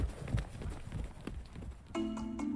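animal, horse hooves clip-clopping

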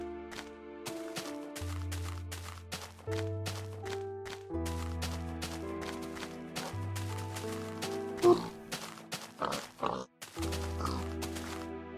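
animal, pig oinking

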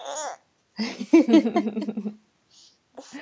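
human body sound, baby babbling

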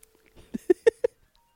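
signal or alarm, mobile phone ringtone

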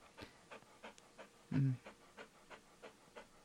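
animal, dog panting

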